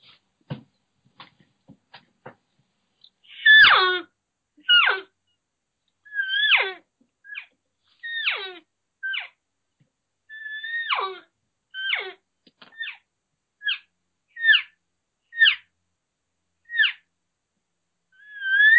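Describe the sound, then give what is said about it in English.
A series of a dozen or so elk cow and calf calls imitated by a single caller: high, whiny mews with short rising-and-falling squeals, spaced a second or two apart and fairly loud, after a few soft clicks. “calf sounds, so a lost calf, kind of a cow-calf talking together, couple of cows talking together, maybe a cow bugle.”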